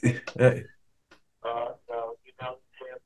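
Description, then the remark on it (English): A mobile phone rings during an interview with a short repeating melodic tone, four evenly spaced bursts at moderate volume, following a brief moment of someone talking. “So I don't know what, get some phone call anyway.”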